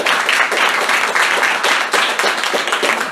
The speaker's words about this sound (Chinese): OK， 最后呢，也要谢谢我 ABO Studio 的伙伴以及同伴、伙伴一起打拼的 comrade 们，请给他们一个很大的掌声。